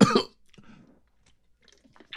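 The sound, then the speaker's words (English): A person fakes a cough: one loud, sharp burst at the start, a softer rasping follow-up, then a brief quiet pause before another short cough at the end. “Those are fake coughs.”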